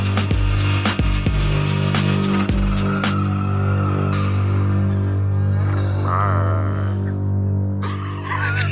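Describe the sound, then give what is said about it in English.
A voice imitates a Godzilla roar: a loud, sustained, rasping growl with a droning low buzz, broken by a few sharp crackling bursts early on before it trails off unevenly. “That was your Godzilla roar?”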